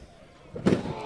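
A single heavy crash as wrestlers Chuck and Randy put Mongo through a door bursts out midway, then rings off briefly over a low, murky background rumble.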